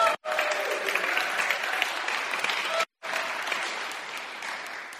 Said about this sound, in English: No one ever clapped for me that way. It's okay. It's okay.